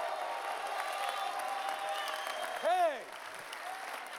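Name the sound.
audience clapping and shouting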